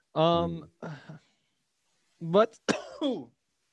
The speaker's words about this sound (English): That was a big cough. Came out of nowhere too.